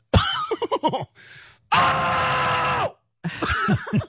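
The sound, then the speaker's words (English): A loud, anguished, theatrical yell, a drawn-out agonized wail of about a second surrounded by shorter strained vocal bursts and groans, alone with no talking. “Give me the yell.”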